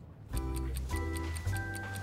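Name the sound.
clock ticking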